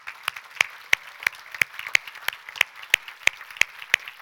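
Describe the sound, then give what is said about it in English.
A crowd applauds steadily for veterans standing up at a Memorial Day gathering, a dense wash of clapping with sharp, evenly spaced claps standing out in a quick regular beat throughout, moderately loud, with no talking. “So if all the veterans would stand up today, let's give them a round of applause.”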